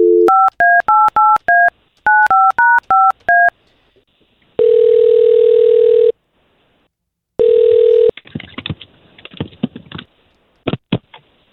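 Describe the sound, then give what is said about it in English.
Two quick bursts of touch-tone keypad beeps dial a man's phone number, followed by two long, steady ringback tones and then scattered clicks and rustles as the line connects. No one speaks. “All we're going to try to do here is get him on the phone and see if we can't talk to him.”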